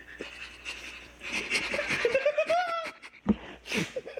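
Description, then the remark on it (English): A person mimics a dog's panting with quick, breathy huffs and a rising squeaky whine, fairly loud, lasting a few seconds with no clear words. “Do you think it'll think I'm a dog?”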